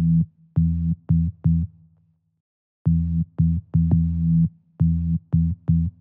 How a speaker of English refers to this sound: But why? Why do we feel unnerved by a low rhythmic pulse like the one I've used in this song? Let's give it a listen.